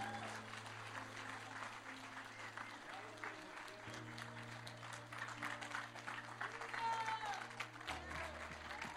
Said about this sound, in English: So I want you to give them a round of applause,